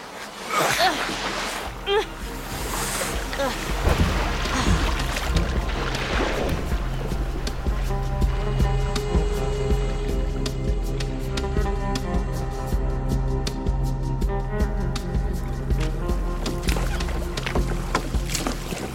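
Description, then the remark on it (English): A rowboat being rowed: rhythmic creaks of oars and splashy sloshing water, steady, with a soft sustained tonal background settling in partway through. “Row this boat. You're going to push this boat out just real slow, just like this.”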